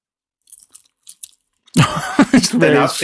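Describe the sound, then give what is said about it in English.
A few soft mouth sounds of someone chewing ready-to-eat vegan firecracker chicken-style pieces with no crunch, quiet wet smacks in short bursts, before a person starts talking loudly. “Yeah, they're not a crunch to them.”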